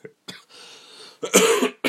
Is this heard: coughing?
yes